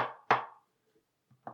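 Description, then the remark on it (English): A few sharp knocks on wood: two quick raps, a short pause, then two more, each with a brief resonant decay and no talking in between. “Hopefully you guys could hear that knocking on wood.”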